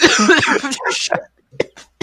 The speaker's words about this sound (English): I've been coughing on the mic this whole time. There's a popcorn kernel stuck in my throat. As I was saying before, the popcorn kernel tried to fucking murder me.